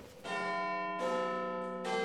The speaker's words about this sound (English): But the castle clock struck 7:30, dinner was at 8, and the poor prince crawled on hands and knees to the garret.